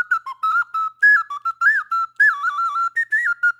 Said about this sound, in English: Played the Magic Ocarina. All aboard the Nintendo hate train.